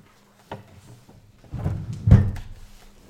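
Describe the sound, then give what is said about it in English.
A drawer knocks open, then items are shuffled and rummaged through for a second or so, with a heavier thunk partway through the search. “Can you look in the drawer behind you?”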